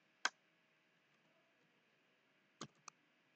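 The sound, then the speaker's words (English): A few sparse, crisp keyboard keystrokes while logging in with a username on a trading platform: one sharp tap, a long pause, then two quick taps near the end over a faint steady background hum. No one speaks. “Yeah, I'm not usually this slow with typing actually, but these things happen.”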